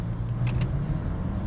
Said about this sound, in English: Hear that? Listen to that engine. Continuous variable transmission.